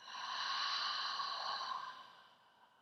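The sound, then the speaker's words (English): A single slow, breathy exhale during a guided breathing exercise, soft, with a steady airy hiss that fades away over a couple of seconds. No one speaks. “And exhale.”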